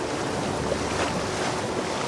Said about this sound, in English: But suddenly they came upon an utter fury of water which Will knew must be the River Thames, transformed by the sudden flood. The river!